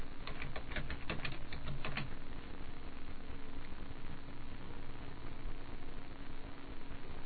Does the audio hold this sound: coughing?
no